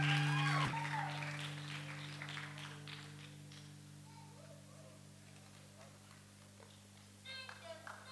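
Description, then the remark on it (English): A round of applause inviting a sister from Kumasi to give a solo ministration: a patter of many claps that slowly thins out, over a steady low electrical hum, with a brief rising squeal at the start and a late burst of clapping. “Please, with a round of applause, shall we invite our sister”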